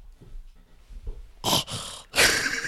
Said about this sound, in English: I keep yawning uncontrollably. Yeah. It's early in the morning. It's almost noon, but we've been up since 9:30.